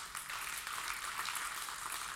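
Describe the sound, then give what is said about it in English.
An audience claps together in a steady, dense patter of many hands, sustained at an even, moderate loudness for a couple of seconds with no voices over it. “Because, you can clap at that.”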